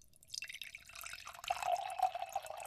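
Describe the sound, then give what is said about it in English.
Red wine, Flyboy Red from Somerset Ridge Vineyard and Winery in Miami County, Kansas, pours into a glass, a soft gurgling trickle that builds and steadies into a bright, rising splash as the glass fills, with no talking over it. “Let me pour you a glass here, Mama.”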